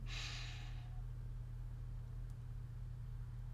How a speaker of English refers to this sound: And I invite you to take a deep breath. Breathing in, holding, and exhale. Breathing in